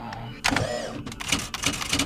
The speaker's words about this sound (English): His father, John Arthur Shields, was the world's speed typing champion at the turn of the century. He would type the Gettysburg Address over and over again on a manual typewriter at a rate of 222 words per minute.